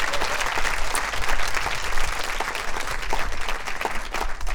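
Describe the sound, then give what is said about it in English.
A room full of people at an evening storytelling event, held in a place used for incarceration, claps steadily for several seconds for the storytellers, dense overlapping hand claps forming a sustained, fairly loud wash of applause with no voices standing out. “maybe one final round of applause for all of our storytellers of the evening.”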